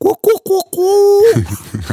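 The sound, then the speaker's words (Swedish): A person mimics a woodpecker with their mouth: four quick, clipped vocal bursts, then a longer held note, followed by a voice starting to speak. “En hackspett.”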